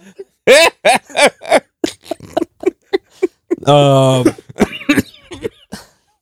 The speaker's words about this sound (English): I'm still sick. I'm still got the cough. You choking there, bro. What's up? My bronchitis.